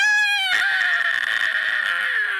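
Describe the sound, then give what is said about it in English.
A group of people scream together at full volume in a long, sustained, high-pitched shriek. One voice starts alone and the others quickly join in, holding the loud cry for about two seconds. “We always got to scream at the end.”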